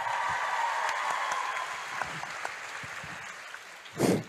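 An audience claps together in a steady, crackling patter of many hands, holding an even level before a brief louder swell near the end.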